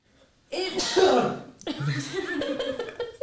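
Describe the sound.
A single loud, close-up sneeze bursts out sharply, followed immediately by a person starting to talk.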